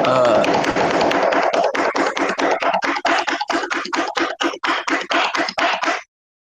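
A rapid drum roll pounded out on a desk for a prize drawing: a dense flurry of hard knocks that breaks into a steady run of loud, evenly spaced thumps before stopping abruptly.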